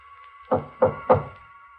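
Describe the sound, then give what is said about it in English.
Three firm knocks on a door, evenly spaced about a third of a second apart, solid, over a faint steady hum with no one speaking. “He knocks on my door.”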